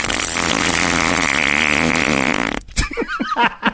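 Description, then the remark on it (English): A long, loud, buzzy fart sound effect sputters with a rattling, wavering pitch for about two and a half seconds, then cuts off abruptly as voices break in. “Hey, you want to hear the world's funniest fart sound effect?”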